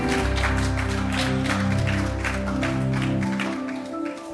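An audience applauds the band steadily for a few seconds, a dense wash of clapping over a low, sustained musical chord that drops out near the end.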